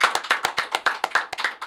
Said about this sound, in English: Can we get a round of applause?